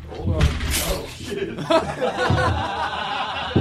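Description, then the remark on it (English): A chair topples over with a loud clattering thud at the start, followed by people chuckling and snickering amid indistinct talk, during a recording of The Todd Glass Show. “Is that funny that my chair fell over?”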